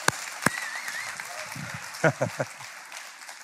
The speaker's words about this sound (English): And I'm going to clap for myself right there.